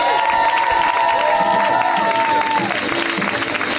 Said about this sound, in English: Please put your hands together and welcome our final comic to the stage, Moses Storm. Give it up for Moses.